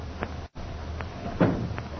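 A door is opened and shut, a few short wooden knocks and clicks scattered over about two seconds, with a louder thud near the end and no one talking.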